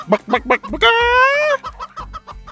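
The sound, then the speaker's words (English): A voice imitates a chicken: quick, choppy clucks, then a long drawn-out squawk, then more clucking, loud with no other sounds around it. “… flapped his hands and clucked like a chicken.”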